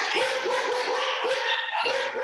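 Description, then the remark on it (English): Dogs from a household of 11 or 12 dogs bark in a rapid, overlapping volley, sharp yappy barks repeating several times a second, fairly loud and continuous over a bright, noisy background, with no talking. “We have a few dogs.”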